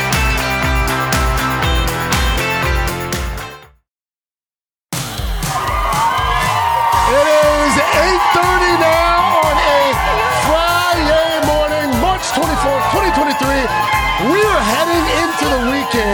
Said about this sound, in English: With a fantastic group on the plaza. How y'all doing? Doing great? This is a crowd.